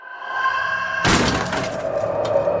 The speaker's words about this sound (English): Glass shattered all around them, and household items began to take on a life of their own, flying from left to right.